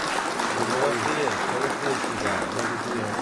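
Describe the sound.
A group claps steadily for about three seconds, a dense, even patter of many hands at a constant loudness, with faint voices mixed underneath.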